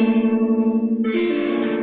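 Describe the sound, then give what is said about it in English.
An electric guitar chord in a close voicing, played with the picking hand's index finger and strummed with the pinky, rings out with a wavering, effects-laden sustain, then is strummed again about halfway through, brighter and fuller, with mild distortion and no voices. “ring with your picking hand's index finger, okay, and then kind of strum it with your pinky. You get this close voicing that's impossible to play.”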